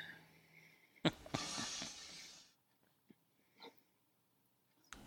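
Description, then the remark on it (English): A heavy, squirmy puppy being held snorts and grunts: a sharp snort, then a long rasping snuffle for about a second and a half, followed by a few short, quieter grunts and sniffs with pauses between. “It's the same type of dog Ben has. You're very cute.”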